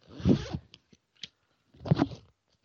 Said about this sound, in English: Nothing got pinched when the zipper got stuck, did it?